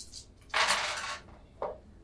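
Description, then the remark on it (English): Fate dice, one of seven sets on the table, clatter and tumble across a table in a bright, rattling burst lasting under a second, followed by a single sharp click as one settles. No one speaks. “You got 7 sets on the table with fate dice.”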